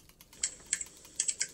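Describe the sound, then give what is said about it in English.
Several quick, crisp clicks of someone typing on a computer keyboard, coming in small irregular bursts, fairly soft, with no talking. “No, I'm typing Dragon's Den.”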